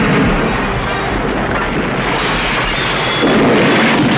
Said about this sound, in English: You know what? I love that you can hear the car exploding before the car explodes. Yeah. It's like, it sounds like they had about 10 windows in that car and a bag of explosives, yet the car doesn't explode.